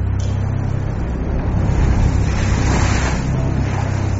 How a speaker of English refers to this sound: Already we have like mast and mast and a half high waves. Got like 50 knot gusts.